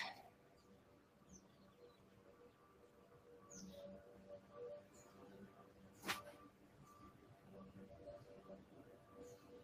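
Birds chirp and tweet repeatedly in the background, short bright calls scattered over a low steady hum, with one sharp click partway through.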